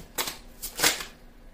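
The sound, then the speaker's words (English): A few quick, papery riffles of a deck of tarot cards being shuffled during a tarot reading for Scorpio, soft bursts of crisp flutter with brief pauses between them and no talking. “May I have some more cards, please?”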